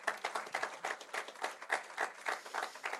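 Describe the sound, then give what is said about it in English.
A church audience breaks into applause, a dense, steady patter of many hands clapping at once with rhythmic swells, carrying on without any talking. “A round of applause for all those people who fit into that bracket right now.”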